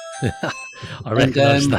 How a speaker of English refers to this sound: And sorry about that. That's the ring doorbell.